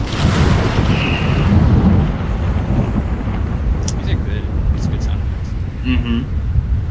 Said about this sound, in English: The sound of thunder is getting closer for sure. And lightning is illuminating the sky.